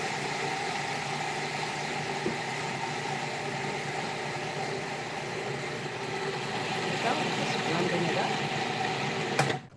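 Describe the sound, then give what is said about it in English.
A blender runs with a steady, loud mechanical whir for about ten seconds, its motor pitch holding constant before swelling slightly and cutting off abruptly at the end. “Anytime she has done it, they do a dance during the blender.”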